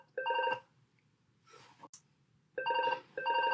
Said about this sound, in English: My phone is ringing. It was the only thing that I thought not to block.